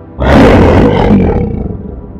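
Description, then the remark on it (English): A single loud lion roar bursts in, deep and rumbling with a rough, gravelly texture, then trails off over about two seconds with no one speaking. “A large lion is released from the gates.”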